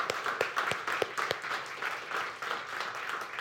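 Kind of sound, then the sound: crowd, audience applause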